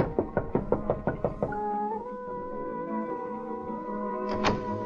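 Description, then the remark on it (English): A quick, steady run of about eight firm, crisp knocks on a wooden dressing-room door backstage, then the knocking stops and soft sustained musical tones from an orchestra warming up hang in the background. “I wandered around backstage to the dressing rooms, found a door that said Miss Butterfield, and knocked.”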